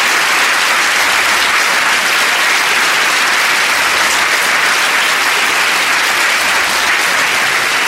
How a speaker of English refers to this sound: Can we have a hearty, warm round of applause?